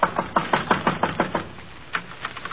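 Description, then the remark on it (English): A quick run of about nine knocks on a small wooden shed door, fairly loud, followed after a short pause by a couple of fainter raps. The shed is big enough for half a dozen garbage cans and has a cheap padlock on the outside. “Just in a hunch, I go over to the shed and knock.”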